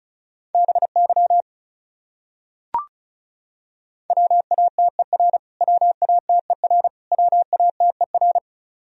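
Rapid Morse code tones at about 35 words per minute sending common English words: a steady mid-pitched beep keyed into quick dots and dashes, with a short group, a pause broken by a single click, then longer runs.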